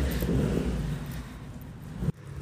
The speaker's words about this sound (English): Warning again that we are out in the world, and so you will hear ambient noise, just like this car that's about to probably blast past me here in a hot second.